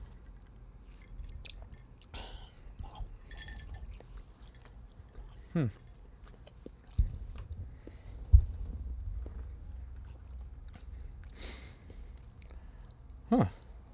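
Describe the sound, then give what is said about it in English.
Someone takes small sips of a vodka martini made with Grey Goose vodka, with quiet slurps, swallows and soft mouth sounds spread across a hushed stretch, broken by a few sharper clicks. “But let's go ahead and taste a little sippy sip.”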